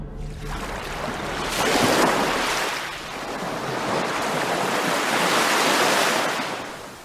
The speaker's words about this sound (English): Waves crash against the concrete pier, and I count the rhythmic lapping in my head. 1, 2, 1, 2.